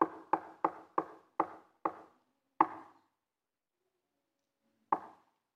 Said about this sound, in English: And so the Lord is knocking.